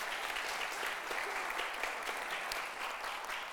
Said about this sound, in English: You can go ahead and clap for each other.